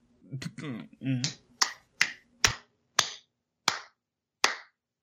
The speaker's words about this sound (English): Clapping my hands here, because I...